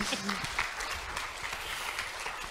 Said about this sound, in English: You can applaud to welcome him, yes.